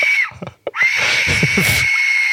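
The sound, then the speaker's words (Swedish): A shrill, piercing wail from a blown instrument holds a steady high pitch, breaks off briefly, then returns as a sustained shriek, eerily resembling a woman's terrified scream, loud. “Hur kan man ta fram ett sånt här instrument? Det låter ju verkligen som en kvinna som skriker för sitt liv.”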